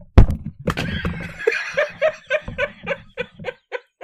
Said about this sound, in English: You can just slap your hands together like I did.